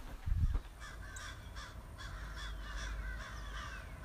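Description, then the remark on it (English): Crows caw repeatedly at a steady moderate pace, harsh calls outdoors over a low rumble of wind or traffic, with a brief thump near the start. “You hear all these birds?”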